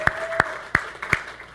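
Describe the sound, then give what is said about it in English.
Audience applause for departing guests, heard as a handful of sharp, evenly spaced claps standing out over a faint background murmur, moderately loud. “So we know you're a group of distinction and taste because you clapped for them.”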